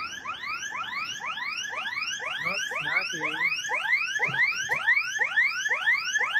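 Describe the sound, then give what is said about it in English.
An electronic alarm on a robot blares continuously, a rapid chain of rising, whooping tones repeating several times per second, loud and steady with no voices over it. “So at least this bot actually had an alarm ringing”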